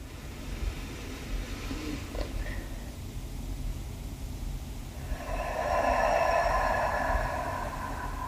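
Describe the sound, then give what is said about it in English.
Slow, deep breathing during a breathing exercise: a soft, airy breath followed by a longer, louder rushing exhale, with a low hum underneath and no talking. “Continuing this breathing pattern for a little while.”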